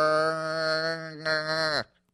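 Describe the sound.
A voice imitates an underwater duck quack: a long, buzzy, nasal drone in two steady stretches with a brief break between, ending in a quick downward pitch drop.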